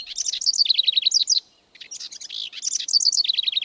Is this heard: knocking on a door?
no